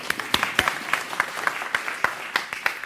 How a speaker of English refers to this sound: Brilliant. Let's give him a clap.